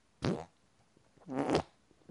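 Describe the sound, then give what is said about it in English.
Two wet, sputtering armpit farts, each about a quarter second long with a brief pause between them, fairly loud against a quiet background. “Shh, I'm armpit farting.”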